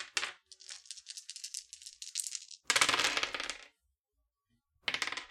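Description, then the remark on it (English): Six dice rattle and clatter during a tabletop game: a long run of quick clicks, then a loud tumbling burst, and a short final rattle a second later. No one speaks. “I'm only rolling 6 of my 10.”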